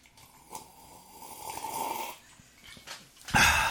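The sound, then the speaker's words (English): A long, noisy slurp as someone sips Gibson's Finest Rare Whiskey, airy and gurgling for a few seconds, with a louder burst of slurping breath at the end. “Why do you slurp that? Just so they can hear it.”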